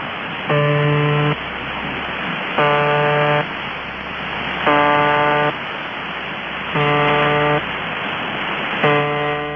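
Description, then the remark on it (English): A harsh, buzzing tone sounds in regular bursts, about one second long every two seconds, over a steady bed of hiss and static: the repeating buzzer of the Russian shortwave radio station UVB-76, known as the Russian Buzzer. “UVB-76 aka THE RUSSIAN BUZZER”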